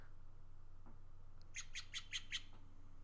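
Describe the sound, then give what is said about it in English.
A bird call played from a bird identification app: five quick, bright, high chirps in an even rhythm, clear, over a faint steady low hum with no talking. “In the bird community, when you're trying to identify a bird, you can quickly go to this awesome app, and I'm gonna play a bird sound for you, and you tell me if you recognize this sound.”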